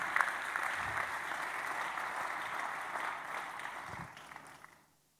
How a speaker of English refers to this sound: You're clapping.